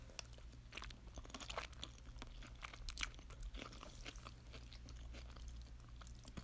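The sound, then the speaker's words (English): Crisp crunching from someone eating onions or zucchini noodles, with repeated bites and chomps scattered irregularly over a low, steady hum and no talking. “Ooh, if you hear the crunching part of me eating, it's either the onions or the zucchini noodles.”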